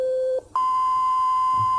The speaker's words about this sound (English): In an analog synthesizer like this, we start out with an oscillator. An oscillator produces a steady pitch sound.